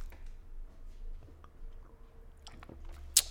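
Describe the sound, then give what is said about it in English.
Quiet mouth sounds of someone taking a first sip of a Heineken non-alcoholic beer, with soft wet smacks and swallows over a low background hum, ending in a brief sharp click. “having the first sip of the non-alcoholic beer that's premiered from Heineken.”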